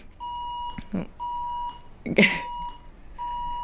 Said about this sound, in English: Gotta love the bell going off midway through.